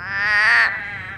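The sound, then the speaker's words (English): Toads sing at a neighborhood pond: a sustained, buzzy trill rings out loud, a continuous pulsing drone that swells and then tapers off, with no voices present. “A neighborhood that's rich with biodiversity and singing toads, and not too many mosquitoes.”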